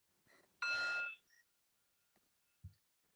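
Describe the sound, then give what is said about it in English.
A single bright meditation bell chime marks the start of a 30-second meditation, ringing out loudly, holding briefly before fading into near silence, with a soft low thump shortly after. No one speaks. “So 30 seconds, a bell before, a bell after.”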